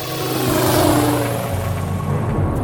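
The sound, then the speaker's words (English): A helicopter's rotor blades thrum in a loud, steady drone with a deep rumbling undertone, continuous, no voices over it. “It's too tight. The blades will cut into the buildings.”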